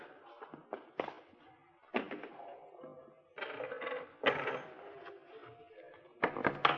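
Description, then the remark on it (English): A series of uneven clunks and clatters with rustling in between as the contents of a pocket, including a lot of paper money, are dropped and spread one after another onto a table. “take everything out of your pocket, Schaefer. What? Come on. Just put it right there on the table.”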